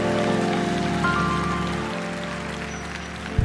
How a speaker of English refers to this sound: Now give the Lord a clap offering and a shout. Now give Him a shout.